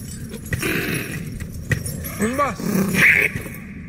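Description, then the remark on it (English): A dragon's vocalizations, dog-like and beast-like, with low growls and a brief whining, rising call, set against a busy background of rustling and jangling clatter. “And there's some cool sound effects here with the dragon's vocalizations, kind of dog-like, kind of beast-like, pretty cool stuff.”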